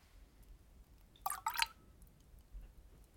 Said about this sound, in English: Add a few drops of water.